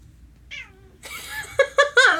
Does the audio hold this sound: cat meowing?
yes